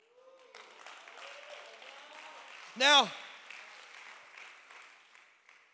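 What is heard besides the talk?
audience clapping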